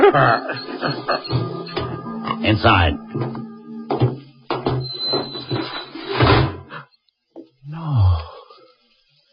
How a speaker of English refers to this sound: Open the door, Bobo.